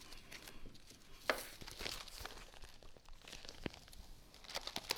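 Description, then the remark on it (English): A sheet of paper with written prayers rustles and crinkles as it is handled, with soft irregular crackles and a few sharper snaps spread throughout, fairly quiet, with no talking. “See all these words on the paper? Prayers.”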